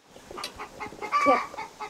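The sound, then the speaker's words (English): Several chickens cluck in a busy, overlapping chatter, with short bursts and one louder squawking call rising mid-clip, fairly loud with no voices. “Sometimes she'll chase those chickens out of there.”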